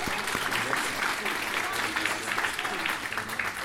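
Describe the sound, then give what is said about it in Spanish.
An audience applauds a police detective from the city of Mesa as he is introduced, dense, steady clapping that holds at an even level for nearly four seconds, a continuous wash of many hands with no pauses. “Le damos un aplauso.”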